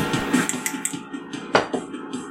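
Metal dice, rolled for a damage roll in a tabletop role-playing game, clatter across a hard surface in a quick rattle of bright, sharp clicks, followed by a couple of louder knocks as they tumble to a stop, with no voices.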